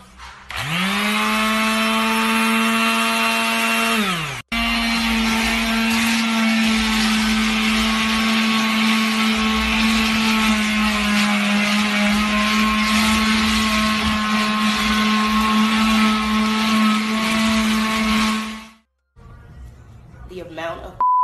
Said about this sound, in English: Yes, you know I gotta scrape all this up. I got my sandblaster, my goggles. It's about to go down.